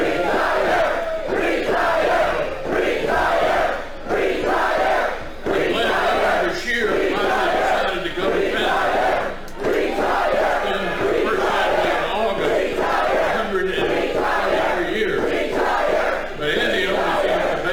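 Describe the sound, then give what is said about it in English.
A large crowd in Kentucky boos Mitch McConnell loudly and continuously, a dense wall of jeering voices that swells and dips in waves throughout, with no single speaker clearly audible above it. “Like, this is Mitch McConnell all over the weekend getting booed in Kentucky.”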